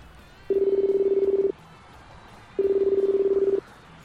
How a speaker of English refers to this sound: Answer the phone, please.